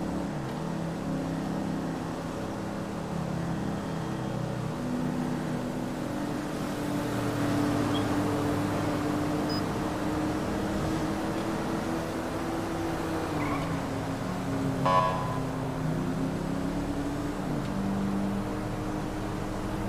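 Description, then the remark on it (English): Steady road noise from traffic on a highway, a continuous low engine rumble whose pitch slowly shifts, with a brief louder swell late on. No one speaks. “And you guys, this is the part where I hate because we're on a highway, and this is the part where it gets kind of tricky because there's always traffic.”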